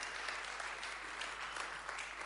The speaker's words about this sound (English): Let's give him a big round of applause and thank you as he comes and shares.